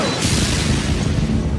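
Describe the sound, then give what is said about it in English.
A loud whip-crack sound effect for the whip of the Marvel character Blacklash: a harsh, booming burst of crackling noise that fills the whole moment and holds steady for over a second, with no voices. “So here's Blacklash's whip.”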